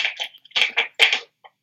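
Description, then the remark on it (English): Rummaging noises as someone searches for a pencil: a quick series of scrapes, clatters and rustles in irregular bursts, fairly loud, with no talking. “Sorry, I was trying to find a pencil.”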